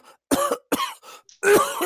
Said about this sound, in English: She starts coughing and everything, and literally she screams.